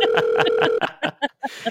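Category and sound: signal or alarm, telephone dialing tones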